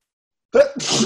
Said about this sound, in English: Bless you. There's the second one.